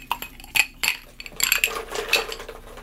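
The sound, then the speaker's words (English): Ice cubes clink and rattle into small old-fashioned glasses for a tequila drink, a few sharp separate knocks followed by a denser tumble of clattering with bright glassy pings, with no one talking. “So we're going to fill these old-fashioned glasses with ice, then we'll top it with tequila.”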